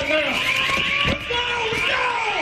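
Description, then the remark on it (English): A building alarm blares continuously, a loud, steady electronic tone that fills the whole stretch without pause, with faint voices murmuring underneath, as police search the building room by room for a shooter. “The alarms are sounding.”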